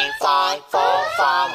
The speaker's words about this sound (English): Oh, jeepers, crying out with the alarm.